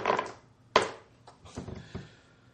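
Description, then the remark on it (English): Dice rolled for collateral damage in a tabletop game rattle and clatter onto a wooden table, with a sharp hit followed by a few smaller, scattered knocks as they settle. The sound is moderately loud, with no voices. “All right, those will be gobble dice for their collateral damage.”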